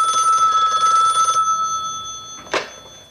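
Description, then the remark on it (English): A telephone bell rings in a bright, steady trill for over a second, then stops, leaving a faint lingering tone before a short clattering knock, like a receiver being picked up. “I'm ringing you right now.”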